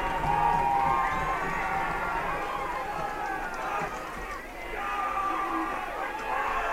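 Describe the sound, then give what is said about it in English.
A large stadium crowd at a football game at Andre Reed Stadium roars steadily for several seconds on a third-and-7 play late in the fourth quarter, a dense wash of cheering and shouting that swells slightly toward the end. “Crowd's getting loud here at Andre Reed Stadium, and another whistle.”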